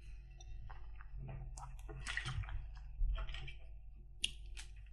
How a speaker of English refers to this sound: Sorry, I was taking some water at that point and that's nearly destroyed me.